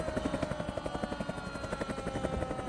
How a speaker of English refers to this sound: Now, the whole time a helicopter flew over him.